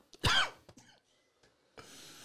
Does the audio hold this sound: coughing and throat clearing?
yes